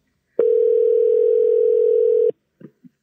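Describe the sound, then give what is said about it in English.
A telephone ringback tone on an outgoing call to Dallas, Texas: one steady, clear electronic hum lasting about two seconds, cutting off abruptly and followed by a couple of faint clicks, with no voices. “Oh, it's ringing.”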